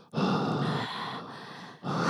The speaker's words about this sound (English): I can hear it. You're not going like a hungry troll. This episode brought to you by mouth breathing.